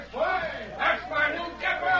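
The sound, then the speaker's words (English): A crowd of townspeople of Wayne cheering and shouting together for a man they are following, many voices rising in a few loud swells over about two seconds, with no single clear speaker. “Oh, they're cheering for you, Dave.”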